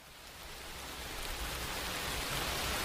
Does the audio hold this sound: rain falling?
yes